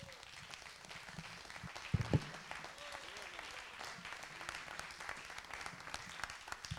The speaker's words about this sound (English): You guys are applauding when I cussed in church. You guys are a bunch of heathens.